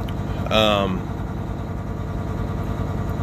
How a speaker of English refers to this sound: My truck's going to make a whole bunch of noise now.